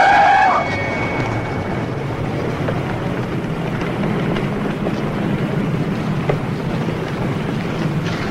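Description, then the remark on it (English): A short, high-pitched squeal of car tires skidding under hard braking, lasting under a second, followed by a steady low rumble of engine and road noise with no one speaking. “I gotta get these brakes adjusted.”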